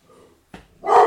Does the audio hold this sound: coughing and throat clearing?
no